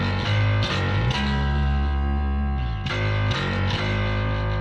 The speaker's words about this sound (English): the bass was doubling the piano, or the piano was doubling the bass like that in that same octave